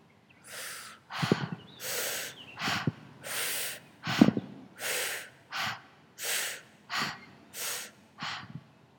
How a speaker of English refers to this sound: If there's intensity in your mind and in your body, maybe you need an intense breath just to move through this intense energy.